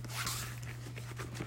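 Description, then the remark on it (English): A laptop bag zipper being pulled closed in one continuous rasping run lasting over a second, with a low steady electrical hum underneath and no talking. “And we'll go ahead and zip this back.”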